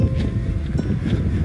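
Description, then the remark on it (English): A gust of wind buffets the microphone, producing a steady, loud low rumble with rough flutter that holds for the whole moment and doesn't let up. “there's a gust of wind. That's going to be really noisy, isn't it?”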